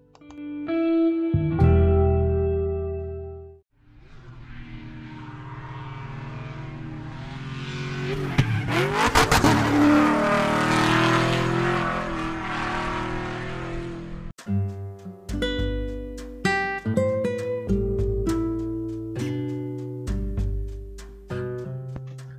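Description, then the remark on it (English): The V12 engine of a 1935 Rolls-Royce Phantom III, a four-door sedan, roars loudly for about ten seconds, its pitch sweeping up as it revs, with a short burst of music before it and bright musical notes afterward. “So the maker of the 1935 Rolls-Royce Phantom III is obviously the Rolls-Royce Holdings Energy Company.”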